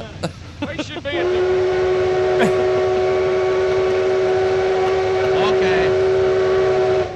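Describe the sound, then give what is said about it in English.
A steam locomotive whistle blows one long, steady tone for about six seconds over the rumble of the train getting underway, heading for the fair, with a brief spoken word at the start. “Well, all aboard, gentlemen.”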